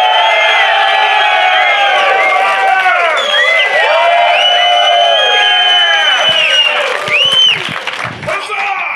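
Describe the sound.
A loud live audience in Columbus cheers and whoops continuously, many overlapping voices shouting and hollering with rising and falling pitches, a dense wall of crowd noise that stays strong for the whole stretch.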